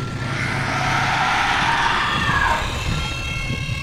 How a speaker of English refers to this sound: The tanks rolled onto the road behind us. We all crouched behind some cacti as they slowly made their way over the ridge.